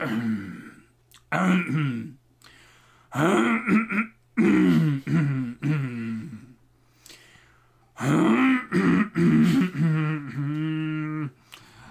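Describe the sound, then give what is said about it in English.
A person clears their throat several times, in a string of loud, throaty, voiced bursts and grunts separated by short pauses. “Clear my throat.”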